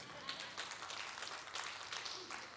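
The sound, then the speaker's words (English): An audience claps in a steady, dense patter that continues throughout, moderately quiet. “I'm not looking for claps.”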